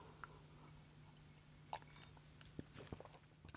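Quiet sipping of whiskey from a glass: a soft clink, then a few small wet mouth and swallowing sounds over a steady low hum, with no talking.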